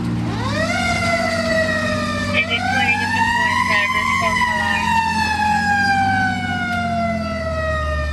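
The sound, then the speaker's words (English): The siren of fire Engine 26 winds up and wails loudly as it heads out on a medical call on a busy afternoon, its pitch sweeping up and slowly falling over a steady low rumble of the truck's engine. “We're heading right back out on a busy afternoon at Engine 26. This time a medical call.”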